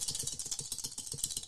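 Dice shaken steadily in a hand or cup, a fast, continuous rattle of bright clicks pulsing in an even rhythm at moderate loudness, with no voices.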